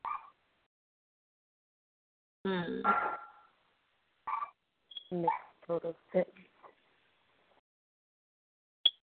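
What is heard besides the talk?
dog barking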